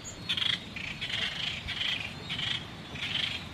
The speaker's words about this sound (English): This is called the Seychelles warbler. And in the 1960s, this bird was critically endangered. The world population was only 20. And it was only found on this island.